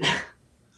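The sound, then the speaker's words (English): A single loud dog bark rings out sharply, then quickly fades into near silence with no voices; dogs chasing a man through a town. “They pretty much, pun intended, beat that dead horse as much as they can before Jonathan runs away to be chased not only by crazy people, but crazy slow motion dogs.”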